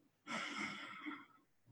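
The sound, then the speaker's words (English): One deep, airy breath in, lasting about a second, with a slight swell near its end before fading back to quiet, taken during a guided breathing exercise. No one speaks. “Breathing in once again, breathe deeply.”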